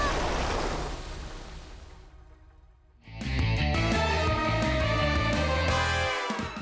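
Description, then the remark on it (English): Loud, churning rush of a strong river current with a windy roar fills the first few seconds, then fades as a dense, pulsing musical swell takes over and builds to the end. “We have to zigzag against the current. It's too strong! The wind! The water!”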